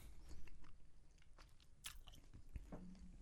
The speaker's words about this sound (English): I just figured, you know, since we were talking, it may not be the greatest idea to be chewing. It's the best time. It's the best time to get that good chew.